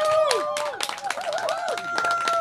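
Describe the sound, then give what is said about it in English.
A crowd at a live card-collecting event at LA Live, Los Angeles, applauds loudly and steadily, with dense clapping and sharp whistles and cheers rising over it the whole time. “Let's get a hand of round of applause for LA Live right now.”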